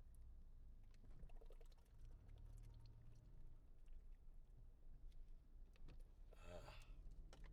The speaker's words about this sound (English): I'm going to take a little drink of water.